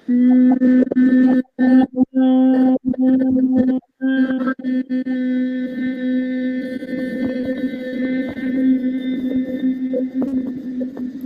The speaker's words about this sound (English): Now you can slide your hands about 2 inches below your belly button to the penultimate chakra. And again, take a moment to breathe in and sense that area with your awareness. And then send the hum there.